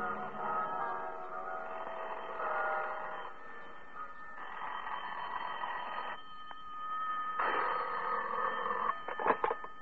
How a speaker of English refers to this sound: That was when the bells started ringing in the Buddhist temple that had been built on top of the Mark Hopkins.